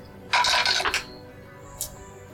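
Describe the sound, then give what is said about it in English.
Dice rattle and tumble across a hard tabletop in a quick, bright clatter lasting under a second, then one last faint click as they settle. No one speaks. “I'll let the dice decide for me.”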